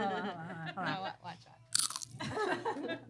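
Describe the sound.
A sharp, loud crunch of someone biting into crunchy nacho chips, with a person talking just before it and more crackly chewing and talk after.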